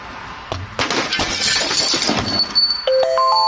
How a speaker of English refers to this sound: Oh, and hit the doorbell? Right, yeah. But managed to perfectly take out one of the supports for, like, the little awning on the front door and perfectly hit the doorbell where it actually rang.